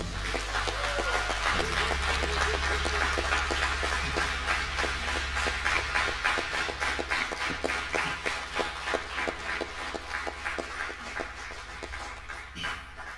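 Concert audience applause in a hall at the close of a band's concert: dense, continuous clapping from many hands, loud and steady throughout, with a low rumble underneath and a few sharper claps standing out near the end.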